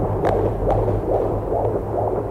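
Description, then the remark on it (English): A fetal heartbeat on an ultrasound monitor, heard when the machine is switched on during an ultrasound: quick, steady whooshing pulses, about five in two seconds, over a low electronic hum, loud with no voices. “We got the ultrasound.”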